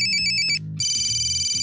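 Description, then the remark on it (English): An old-style mobile or a smartphone on the dashboard of a truck rings with a bright, high electronic trill in quick repeating pulses, pausing briefly before a sustained tone resumes, over a low rumbling hum. No one speaks. “She had an old-style mobile and a smartphone on the dashboard, and every few minutes, one or the other would ring.”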